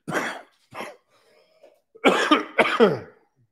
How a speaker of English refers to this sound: Sorry about that. Need a cough button sometimes when we're live here